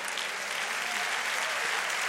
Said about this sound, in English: Hallelujah. Clap your hands.